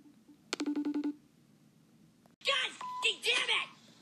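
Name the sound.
phone call tones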